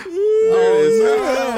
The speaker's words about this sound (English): A yawn. That's a birthday yawn right there.